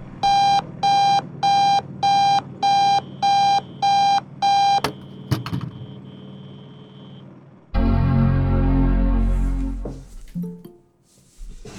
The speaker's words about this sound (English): Sorry. I overslept the alarm.